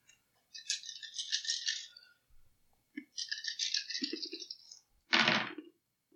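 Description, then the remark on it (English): Dice rattle in two bursts of clicky shaking, about a second and a half each, then one sharp, loud clatter as they are tossed and land, rolled for an investigate roll in a game. No voices. “Sure, make an investigate roll.”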